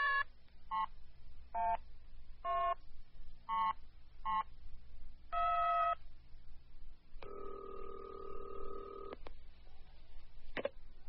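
A series of short, evenly spaced telephone keypad tones beeps out as a number is dialed on a newly installed phone in a house on top of a mountain to call a mother in Eastport, followed by a steady, buzzing ring tone on the line, clear with no talking.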